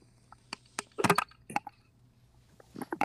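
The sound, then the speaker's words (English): A series of sharp glassy clinks and knocks as a Yocan Evo vaporizer attachment is dropped into a glass bong, with a dense cluster of clattering taps near the middle and a few lighter ones at the end, fairly quiet. “Drop it into your bong right here.”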